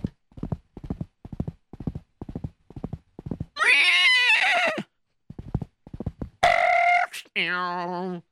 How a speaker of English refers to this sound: Chatzkiller got on his horse, and he galloped as fast as he could.